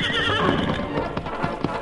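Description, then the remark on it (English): A horse whinnies loudly, its shrill, wavering cry overlapping with quick clip-clopping hoofbeats as it gallops away down a trail. “As the great horse raced down the trail, the wind began to die down and the sun broke through the clouds.”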